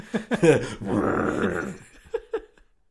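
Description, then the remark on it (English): A voice imitates a lion's roar: a raspy, rumbling growl held for about a second, preceded by a few short vocal bursts and followed by two brief voiced sounds before silence. “That's not what a lion sounds like. I do enough lion noises all the time.”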